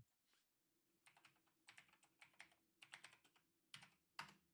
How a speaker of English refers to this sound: Gonna decide whether or not later to leave all that typing in.